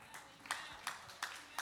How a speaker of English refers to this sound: I'll preach to this side because they're clapping their hands.